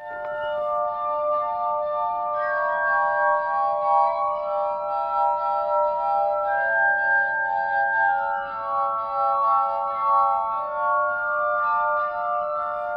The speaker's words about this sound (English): this is a clip of a guy named … playing the glass harmonica